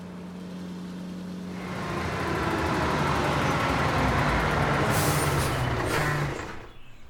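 A semi-truck called Old Stars: its heavy engine drones low and steady, then swells into a loud, rumbling roar with sharp bursts of air-brake hiss before fading out near the end.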